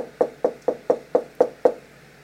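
Seven firm, evenly spaced knocks on a door in quick succession, close and clear, with no voices and a quiet, still background.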